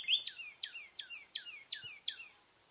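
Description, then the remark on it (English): A single northern cardinal repeats a clear, bright down-slurred whistle about seven times in a quick, even series against an otherwise quiet background, recorded at a spot in Florida in 2017. “Instead of 30 birds counted from 9 species, only 2 species of birds were counted that day, 2 common nighthawks and 1 northern cardinal.”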